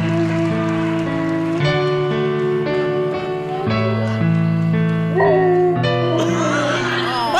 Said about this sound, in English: A dog howling along with music.